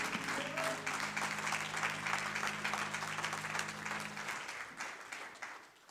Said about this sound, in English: Would you clap your hands unto the Lord, all you people?